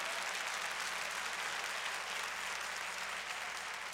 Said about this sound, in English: Clap your hands and praise God for it.